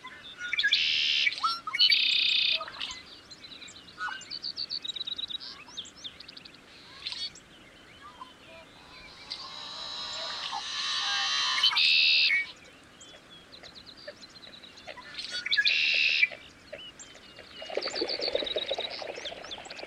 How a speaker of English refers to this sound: The sounds we are hearing are some of the many marsh birds that call this place home. There's a lot going on, so...